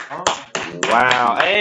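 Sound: round of applause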